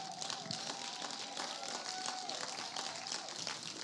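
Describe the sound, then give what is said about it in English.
A crowd claps steadily for several seconds as an applause of praise to the Lord, a dense, continuous patter of many hands, with faint cheering and voices running underneath at an even loudness throughout. “Come on, let's give the Lord another applause of praise.”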